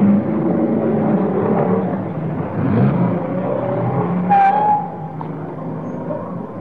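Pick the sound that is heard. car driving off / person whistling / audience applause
car driving off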